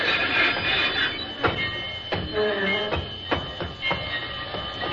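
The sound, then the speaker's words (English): A train rolls loudly and steadily on a concrete road, its heavy rumble punctuated by several sharp metallic clanks and a thin, sustained squeal as it comes to a stop, with no voices. “It simply isn't possible for a train to run on a concrete road. You tell that to Dan Peters, we're stopping.”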